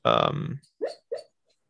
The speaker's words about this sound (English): What is she doing? Is she having nightmares or something? What's the dog doing? Dude, that dog ain't right. What the dog doing? She's dreaming.